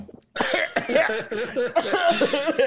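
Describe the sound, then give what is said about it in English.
A loud fit of sputtering coughs from someone choking on a sip of a Sunkiss drink: rapid, harsh bursts tumbling one after another for a couple of seconds, with no talking. “I'm trying don't to choke.”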